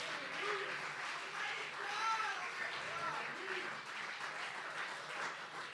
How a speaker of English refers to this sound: I think we ought to just clap our hands and give God praise and glory. Let him know we're going to the other side.